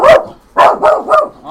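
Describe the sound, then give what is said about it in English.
The dogs Loki and Lulu bark at another dog in a quick, loud burst of four sharp, mid-pitched barks, the last three coming in fast succession, with no talking. “that's probably the most active they ever are. When they see another dog.”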